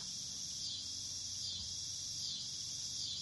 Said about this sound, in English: Cicadas go.